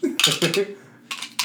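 Dice being shaken, a bright rattling clatter in a few quick bursts with a short pause before the last two, and a faint voice murmuring underneath.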